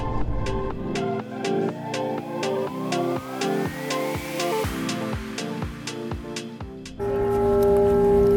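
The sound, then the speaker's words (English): A steady, ringing bell-like chime, signalling the halfway point of a walk, strikes in an even rhythm about twice a second, its tones lingering between hits, with a rising sweep midway and a fuller sustained tone closing it out. “If you're walking with us, consider the bell your signal that you're halfway through your walk.”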